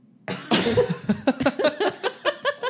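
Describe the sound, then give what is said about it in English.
A harsh cough bursts out, then gives way to a quick series of shorter, rhythmic voiced spasms, like a fit of coughing trailing into sputters. “I thought I had to cough a lot worse.”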